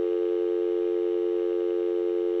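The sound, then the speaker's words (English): A steady, unbroken electronic beep holds one bright pitch at constant loudness for over two seconds, like a censor bleep, with no voices or other sounds alongside it. “If you hear a tone beep, then you know that we violated an NDA, and I'm probably in prison.”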